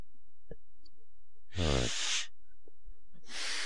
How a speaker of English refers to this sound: I'm gonna blow my nose.